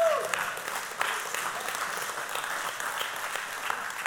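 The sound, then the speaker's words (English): An audience breaks into steady applause and cheering that fills the whole few seconds, with a brief rising whoop at the very start over the dense, even clapping. “And if you're ever going to cheer, that's your moment.”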